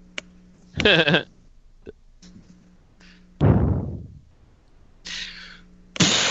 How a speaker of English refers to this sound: I'm getting the joy of my cats running around screeching at each other.